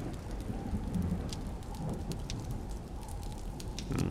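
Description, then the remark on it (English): A storm outside the Chateau d'Azay: steady, dense rain pattering with sharp drop hits, over a continuous low rumble of thunder that swells briefly near the start and end. No one speaks. “These tapestries move slightly, with an uneasy mimicry of life, to the clamor of the storm outside.”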